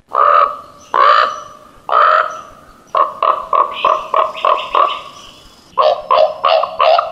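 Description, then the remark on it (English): A raven on a shoreline, announcing that it has found a dead salmon, calls loudly: three harsh, drawn-out croaks, then quick runs of hollow, knocking cowp notes in rapid series, with no talking. “Listen for the loud croak and hollow cowp cowp of the raven.”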